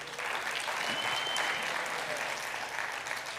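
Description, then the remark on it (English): An audience applauds a couple's 30-year marriage, steady clapping from many hands spread across the room, sustained and fairly loud for a few seconds with no one speaking over it. “And all this communication happening, and now the relationship is built into a wonderful 30-year marriage that we all get to applaud.”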